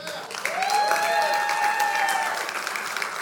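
A church audience bursts into steady, loud applause for the church's first full-time pastor, holding for several seconds, with a sustained, rising cheer carrying over the dense clapping.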